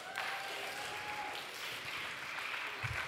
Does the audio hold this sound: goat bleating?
no